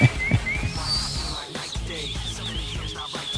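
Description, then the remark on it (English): Shrill whistles rise and warble high above a dense, noisy crowd roar, several overlapping tones sliding up and down continuously through the din. “That's the whistling through the teeth holes.”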